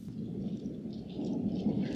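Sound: thunder clap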